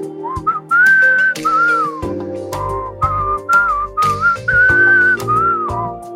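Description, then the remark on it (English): Someone whistles a sweeping, Western-style melody with long held notes and quick rising phrases over a steady instrumental backing, loud and close throughout. “And you'll be back in the whistling saddle getting good, bad, and ugly again.”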